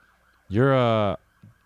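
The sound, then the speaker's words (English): A single short, loud blast of an emergency vehicle siren outside, a bright harmonic wail lasting well under a second, then cut off, with a faint low thump shortly after and no talking. “The sirens in your area sound different from my sirens.”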